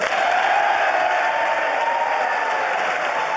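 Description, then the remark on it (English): Sustained applause from Democrats in the House chamber during President Biden's State of the Union address, a dense steady wash of clapping hands at an even loudness throughout, with no speech rising above it. “At times stoic as Democrats applauded the speech.”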